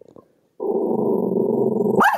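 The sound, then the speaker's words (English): A dog named Sassy lets out a sustained, rumbling growl for over a second, then breaks into a single sharp bark, fairly loud, with no one talking. “and your dog Sassy. Sassy liked the verdict, didn't she?”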